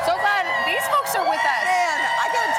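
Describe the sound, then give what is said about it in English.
A crowd at Rockefeller Plaza cheers and shouts without a break during a live NBC Today special on the Olympic Games on a Friday morning, many excited voices overlapping in a steady, loud roar with rising and falling whoops. “This crowd is pumped up.”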